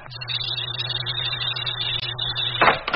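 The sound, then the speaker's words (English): The airlock door of a truck's living quarters opening: a steady low mechanical hum with a bright hiss running throughout, ending in a short, loud burst of rushing air. No one speaks. “Open the airlock.”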